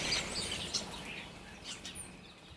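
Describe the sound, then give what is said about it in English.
Faint birdsong at dawn as it is getting light: a few short, high chirps scattered over a soft background hiss, with no voices present. “It is getting light now. Oh God, I can hear birds now.”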